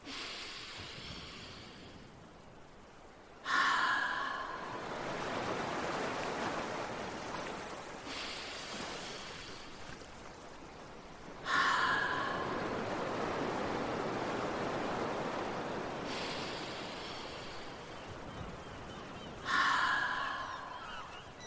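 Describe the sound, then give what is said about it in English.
Three long, slow breaths in an ocean breath exercise, each a rushing, whooshing exhale through the open mouth with a slight throaty edge at the start, imitating the swell and wash of ocean waves. Steady, with short pauses between them. “I'll do three more ocean breaths.”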